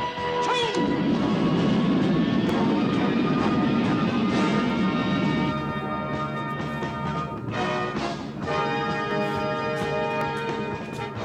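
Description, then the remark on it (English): A rocket, turned from a motorcycle, roars awkwardly through the air up to an airplane and does a little spin, a loud, sustained rushing engine noise with whining tones, briefly dipping before surging again near the end. “And the rocket flies awkwardly in the air up to the plane.”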